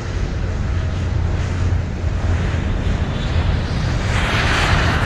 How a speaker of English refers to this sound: The plane took off.